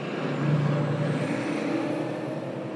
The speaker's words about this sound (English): The question is, don't bikes and cars have to share the road, even a busy one like this?